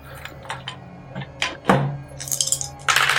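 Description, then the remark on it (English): Dice rattle and clatter across a hard surface, landing on a six: a few sharp clicks, one louder knock, then a bright, rapid tumbling that keeps going to the end. No one speaks. “Roll, kick some ass.”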